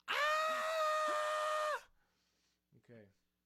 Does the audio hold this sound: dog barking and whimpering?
no